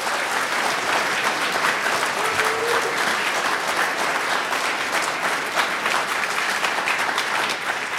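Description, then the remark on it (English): Sustained audience applause as a vote on how likely a global pandemic is, a dense, steady wash of many hands clapping at an even loudness for the full eight seconds, with no voices rising above it. “It's awkward to ask people to clap for a global pandemic.”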